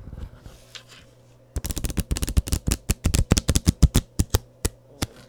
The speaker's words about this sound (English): Wow. She's really good. Okay. Well, she's shuffling the cards.